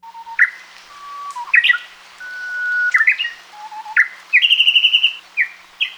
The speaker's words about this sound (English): Japanese bush warblers are small, mostly brownish songbirds with a distinct white eyebrow or superciliary line above their eyes. Because they spend most of their time in dense understory vegetation, they're really hard to see